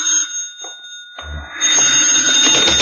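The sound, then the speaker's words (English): A telephone rings with a steady, high, metallic bell tone that carries unbroken through the whole clip, while a low rumble and rougher clattering noise rise beneath it partway through. “You'd better answer the phone. Answer it, comrade, right now.”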